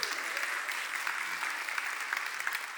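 Steady applause from an audience fills the room for a few seconds, a dense wash of many hands clapping at an even, sustained level with no voices standing out.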